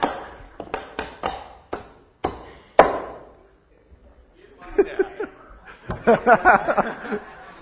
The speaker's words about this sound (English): My hammers from home aren't the same as his. How are we doing? Doing well? You need more nails? You got nails? Okay.